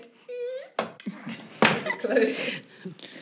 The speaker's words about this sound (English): Then you hear the door close.